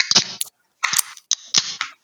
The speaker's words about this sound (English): All right, let's arm ourselves with a can in one hand, glass in the other hand, and let's open her up.